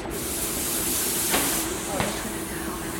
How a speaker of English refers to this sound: I'm going to spray glue on these two parts and assemble the pieces that make up the togo.